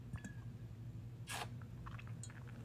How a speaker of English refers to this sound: Excuse me, let me sip.